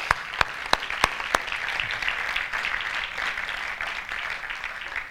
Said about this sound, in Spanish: Y han ido la milla extra las personas que llevan a los niños en Icono Kids, los peques. Así que quiero que les... No los van a escuchar. Pero quiero que les demos un aplauso, ¿ok? Sí, vamos a darles un aplauso.